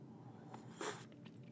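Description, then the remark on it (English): A short, airy slurp of a still-too-hot drink from a tall mug, with a brief hissing intake of breath in the middle and a couple of softer sniffs or lip sounds around it. It is quiet overall, and no one speaks. “And I'm about to take a sip from it right now.”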